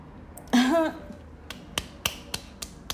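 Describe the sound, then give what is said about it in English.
A short vocal sound, then a hipster friend clapping hands about six times in a loose, steady rhythm, each clap a sharp, crisp crack over a quiet background. “And that's her friend, the hipster, clapping.”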